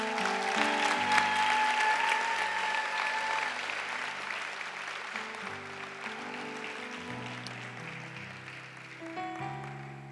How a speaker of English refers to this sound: We welcome the pastors that have just come. Let's clap for the pastors, all of them.